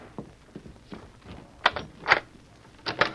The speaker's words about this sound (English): I think I hear someone at the back door.